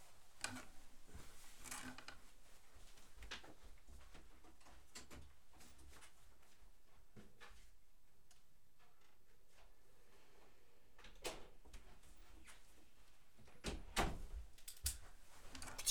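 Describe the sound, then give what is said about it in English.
A door is shut by the speaker: scattered clicks, knocks and handling noises build to a couple of louder thumps toward the end, with no one talking. “So, for you listening live, you're gonna have to pardon me because I have to go close my door because my parents are coming home.”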